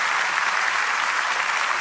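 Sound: audience clapping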